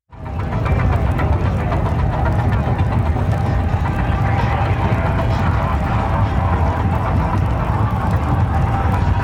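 A huge crowd of about 80,000 people at Burning Man on Saturday night, just after the Man was burnt, roars steadily over the deep, throbbing bass and rumbling engines of art cars in a huge circle, with blurred voices and a faint musical tone running through the loud, continuous wash.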